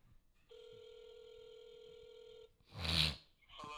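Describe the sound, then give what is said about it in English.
A phone ringback tone plays through a handset held up to the mic: one steady two-second ring, followed by a loud, brief burst of handling noise. “I'm just supposed to hold the phone close to the mic.”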